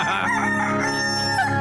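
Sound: rooster crowing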